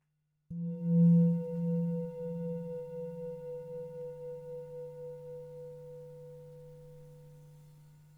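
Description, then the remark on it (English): A single meditation bell is struck once to bring a meditation practice to a close, and rings out with a low, steady hum, its tone gently pulsing as it slowly fades over several seconds, alone without any voices. “When you hear the sound of the bell, notice the sensations of hearing.”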